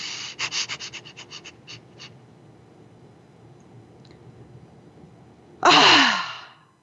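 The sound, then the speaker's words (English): A rapid series of short, forceful breath pulses from a breath-of-fire breathing exercise fades out, followed by a pause and then one long, loud, rushing exhale. “That's a fire breath.”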